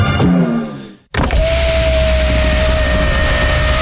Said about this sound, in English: It's a car door. That's it, is it? That's it? That's all you've been... the best you can come up with. Proper Harry Redknapp hanging out of a Range Rover window vibe there.